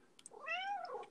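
A single drawn-out cat meow, rising then falling in pitch, heard clear with a couple of faint clicks just before it and no talking.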